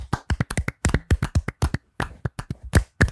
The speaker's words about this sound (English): And as we do, at the end of every single bracket, we are going to clap it out.